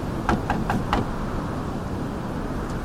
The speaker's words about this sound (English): Locked. Good. Maybe that means someone made it inside. Stop! What are you doing? Knocking. If they are in there, they can open it.